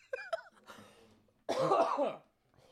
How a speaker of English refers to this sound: I hope I get on with this fucking cough. I hate this shit.